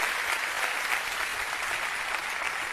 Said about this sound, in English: Let's give the board of trustees a round of applause.